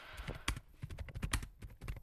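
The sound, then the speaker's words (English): Rapid, irregular clicking of keys as someone types on a computer keyboard, fairly quiet, with a steady run of taps and brief pauses and no voices present. “I feel like, as I'm typing on my computer, I'm looking at these stat sheets right now.”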